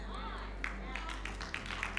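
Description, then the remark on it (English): Scattered audience claps come in loose, uneven bursts, a handful of sharp slaps over a steady low hum, growing slightly busier toward the end but never becoming full applause. “Now, this is the part, y'all clapping because y'all don't even understand the revelation yet.”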